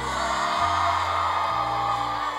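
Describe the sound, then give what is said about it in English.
A large audience shouts "deal breaker" together in loud unison, a dense roar of many voices sustained for about two seconds. “Crowd, they ask you to borrow $5 every week. Deal breaker, let me hear it.”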